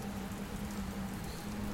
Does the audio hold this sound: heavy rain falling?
yes